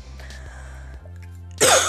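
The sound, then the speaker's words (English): A single sharp, loud cough bursts out near the end, after a stretch of quiet low background hum. “I'm sorry, I'm gonna be coughing a lot.”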